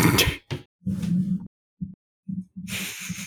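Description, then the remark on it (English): A person sniffs loudly at a microphone in a quick, uneven series of breathy, hissing sniffs and snort-like bursts, with low rumbling noises between them and no speech. “Did you just sniff the mic?”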